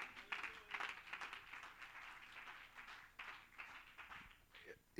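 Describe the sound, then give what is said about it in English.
A crowd claps hands steadily and continuously throughout to give God praise, a dense patter of many overlapping claps, with faint voices mixed underneath. “Oh, clap your hands and give God praise.”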